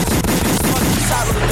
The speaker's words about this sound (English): Gunshot.